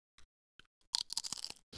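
Crisp potato chips crunch with no voices: a few scattered crackles, then a dense, bright burst of rapid crunching, a brief pause and one more crackly bite at the end.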